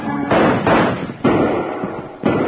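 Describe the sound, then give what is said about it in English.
Four loud gunshots ring out at uneven intervals, each sharp blast trailing into a booming echo before the next one cracks, with no voices. “I don't want to have to ride back through all that lead.”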